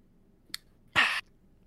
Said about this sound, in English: All right, let's take a sip of yours. Let me see if I can guess. Okay, here we go.